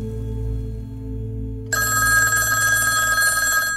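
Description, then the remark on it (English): A telephone rings at Jack Gillum's home in St. Louis, starting partway through: a loud, bright, continuous electronic ring over a low background hum, with no one talking. The call is from an architect at the Hyatt Regency Hotel. “Louis, Jack Gillum and his wife arrived home to find the telephone ringing.”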